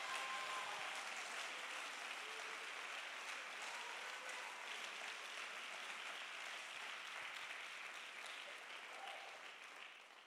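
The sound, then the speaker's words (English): An audience claps steadily in praise, a dense, continuous wash of many hands that stays loud for about ten seconds before easing slightly at the end, with faint voices mixed in. “Come on, let's clap our hands and praise Him.”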